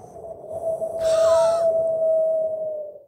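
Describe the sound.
A person imitates a loon's call with one long, steady, wavering tone held for about three seconds, a brief breathy, noisy burst near the middle, then fading out.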